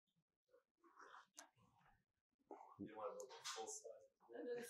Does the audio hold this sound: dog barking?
yes